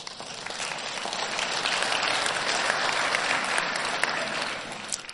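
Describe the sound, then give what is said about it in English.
An audience claps for the power of God, a dense wash of many hands that swells slightly in the middle and tapers off toward the end, with no voices standing out. “And you can clap about that because that is the power of God.”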